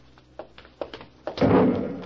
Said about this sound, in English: That came from the ship. Another flare? No, that was an explosion.